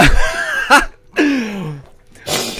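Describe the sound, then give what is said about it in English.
Sharp, abrupt hiccups, two of them, break up a person's drawn-out vocal sounds. They're fairly loud, short involuntary gulps with brief pauses between. “I gave myself hiccups and they hurt.”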